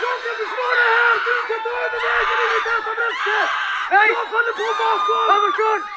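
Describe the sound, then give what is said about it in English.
Several women's voices cry and shout together in a continuous, overlapping wail, loud, with rising and falling anguished cries and no clear words: a group of about 15 Jewish women in woods near a village, made to undress beside a pit before being shot with a machine gun. “As he was making his way there from the train station, through the woods, he heard crying and shouting.”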